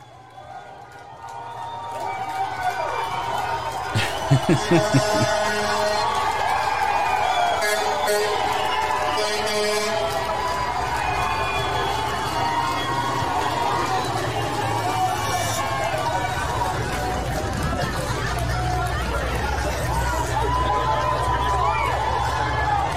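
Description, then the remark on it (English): A large outdoor crowd at President Trump's Mount Rushmore speech cheers and shouts continuously as tow trucks move disabled vans blocking the street, a dense wash of voices and whoops that swells early and stays loud and steady throughout. “crowds cheer as tow trucks move the disabled vans blocking the street to President Trump's speech on Mount Rushmore.”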